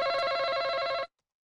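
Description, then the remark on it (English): A loud, steady electronic buzz sounds alone for about a second, a harsh tone with stacked bright overtones, then cuts off abruptly into silence: a game show buzzer as a contestant buzzes in to answer. “Yes, you buzzed in.”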